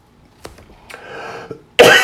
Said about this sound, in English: calm down and you won't cough.